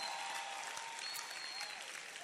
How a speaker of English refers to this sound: So I want us to give a resounding applause to God. He's the reason why we are here.